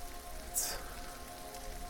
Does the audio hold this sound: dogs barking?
no